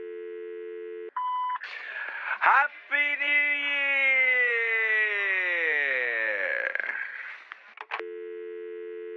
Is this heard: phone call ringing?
yes